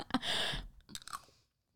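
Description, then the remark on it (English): Wet, squishy chewing of soft pureed chicken and gravy, a brief burst of moist mouth sounds and smacks that fades out after about a second and a half. “It's chicken and gravy, but it's pureed chicken.”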